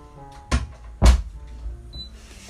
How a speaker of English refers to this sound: Oh yeah, by that, sorry, I'm gonna close the door.